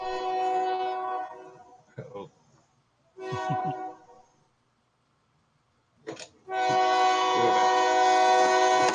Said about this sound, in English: That probably means we'll be hearing a train shortly from our end. So you're near a train track. All of Yorkton is. Yorkton is a train track. Train town. It is a train town.